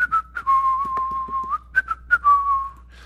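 A person whistles a short tune up close, with clear sustained notes stepping up and down in pitch, broken by a few soft breathy bursts between phrases.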